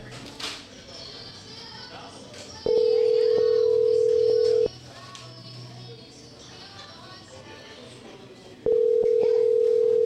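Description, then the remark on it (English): Phone ringback from an outgoing call: a steady, mid-pitched electronic ring sounds for about two seconds, falls silent for several seconds, then starts again, over faint background murmur. “Well, let's fire it up, and let me try to call”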